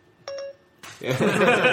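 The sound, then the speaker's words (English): A short two-note electronic chime, bright and clear, of Apple's Siri voice assistant activating, followed after a brief pause by loud, busy voices and noise. “A lot of people know that sound. Yeah, so whenever Siri will be our special guest.”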